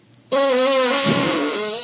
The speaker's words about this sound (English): Oh, she's going to fart on her apple now? Oh. Yeah, she's farting on the apple.